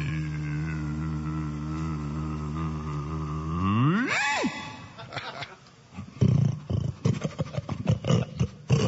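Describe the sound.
A man, a contestant in hog calling, imitates a hog, holding a long, low, rough call that swoops up into a sharp squeal, then breaks into a run of loud, choppy snorts and grunts.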